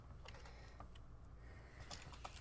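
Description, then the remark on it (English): Quiet, irregular clicks of fingers tapping on a computer keyboard, scattered in short bursts over a low background hum, with no one speaking. “He's typing rolling 41.”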